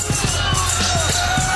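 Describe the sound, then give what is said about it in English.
A steady, dense roar of a wrestling crowd on its feet in the TNA arena, cheering as Ken Shamrock holds the NWA World Heavyweight Championship above the ring, loud and continuous, with low thumping bursts pulsing through it every fraction of a second like clapping or stomping. “Listen to this crowd. Everyone on their feet in the TNA arena for what this man has just done.”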